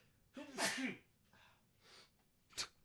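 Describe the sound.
A loud sneeze with a voiced build-up and explosive burst, followed by soft breathy exhales and a brief sharp sniff near the end.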